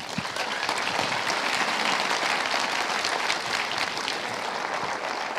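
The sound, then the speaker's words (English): Sustained applause from an audience, a dense, steady wash of many hands clapping at even loudness for several seconds, with no voices over it, as Brian Welsh, director of the film Beat, is welcomed to the stage. “Please welcome to the stage the director of Beat, Brian Welsh.”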